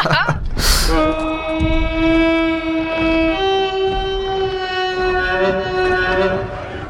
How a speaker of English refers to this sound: I'm going to play the spooky elephant horn noise from Return of the King again